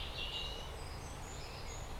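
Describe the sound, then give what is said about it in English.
Faint birdsong of robins singing in woodland, thin high whistled phrases over a steady low rumble of outdoor background noise, with no voices present. “I can hear robins, mostly.”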